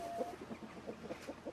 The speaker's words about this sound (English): As we make our way into the massive show hall, nothing can prepare you for the collective sound of ducks, turkeys, geese and chickens, all talking away to each other.